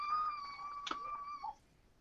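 A female puppy howls one long, steady high-pitched note that dips briefly at the end, lasting about a second and a half, heard alone and fairly quiet.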